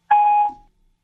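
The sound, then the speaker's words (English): A single short electronic chime, the Siri voice assistant activation chime, rings out on its own, a bright steady tone lasting under half a second before its pitch lingers briefly and fades into silence. “I'll tell you what went wrong, Siri. You're interrupting me during the open.”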